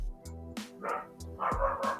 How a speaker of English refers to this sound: Good grief. Can you hear that? Can you hear the dog? Yeah, I can hear your doggy.